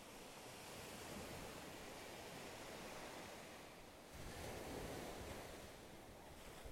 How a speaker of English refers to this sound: Let the sound of the ocean calm the mind.